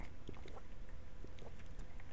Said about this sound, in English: I gotta pause for a little sip of water here.